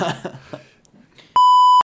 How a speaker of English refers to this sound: And a car drives by.